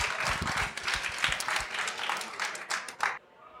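An audience breaks into dense, steady applause, many hands clapping at once for about three seconds before it quickly dies away.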